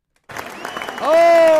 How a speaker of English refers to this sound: And you guys are awesome. And let's do another round of applause for you guys.